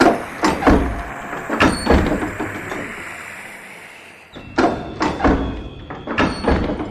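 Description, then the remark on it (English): A storeroom door is opened with a series of loud clunks and rattling thuds, a brief quieter pause partway through, then another run of knocks and scrapes. No one speaks. “Then we shall find out what's behind mystery door number one.”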